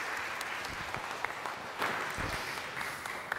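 An audience gives a steady round of applause, many hands clapping in a dense, even patter that holds at a moderate level throughout with a few sharper claps standing out.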